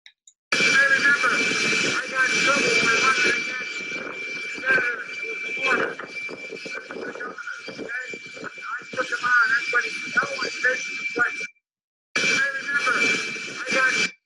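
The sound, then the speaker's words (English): A steady roar of aircraft engine noise fills the background while a man talks over it while travelling by plane, the drone continuous and loud throughout, briefly cutting out near the end. “So the audio is bad. He's by plane”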